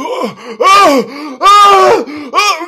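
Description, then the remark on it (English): A voice imitates how a man on all fours groaned, screamed and vomited during a sex act: three loud, harsh vocal heaves with wavering, falling pitch, separated by short gaps, following a quieter low groan at the start. “He was groaning and screaming so loud he started vomiting while I was fisting him.”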